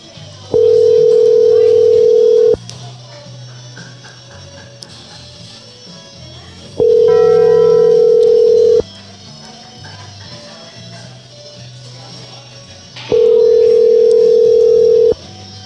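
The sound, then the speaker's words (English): An outgoing phone call rings with no answer and no voicemail: three long, steady ringback tones, each about two seconds, separated by longer pauses, loud and clear over a faint background hum. “Funny how it just keeps ringing like that.”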